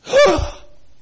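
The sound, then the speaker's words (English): A single sharp gasp, imitated by one person's voice as a circus audience reacting to a tightrope walker falling into the net, rising quickly and trailing off in under a second, fairly loud with no other sounds around it. “But you know, I've been to a circus or two, and I see people so gracious that when the tightrope master falls in the net, there's a gasp.”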